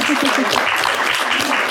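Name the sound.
round of applause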